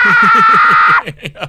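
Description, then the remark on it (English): A voice imitates what the Bajoran alien language might sound like: a loud, high-pitched screech, holding one piercing sustained tone for about a second before breaking into a few short, choppy bursts. “It's like, it was just like a loud screech or something.”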